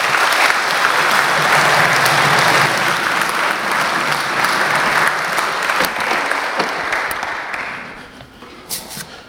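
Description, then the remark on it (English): A crowd applauds a woman who has just spoken, clapping steadily in dense, sustained applause that holds strong for several seconds, then thins and fades out near the end, leaving a few scattered last claps. “Why don't you give her a round of applause?”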